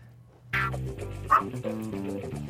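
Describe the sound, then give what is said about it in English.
A small dog barks and yips excitedly in a quick run of high vocalizations, with one sharper yelp standing out midway. “Make sure her dog... She does have a little voice. She does. She saw something that excited her.”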